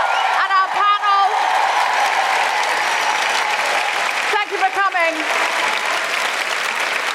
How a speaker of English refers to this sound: I don't have time to name everybody, but can we just have a huge round of applause for all of the incredible performers?